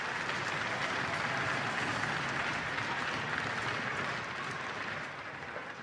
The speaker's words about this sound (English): A huge round of applause to all our sponsors and partners.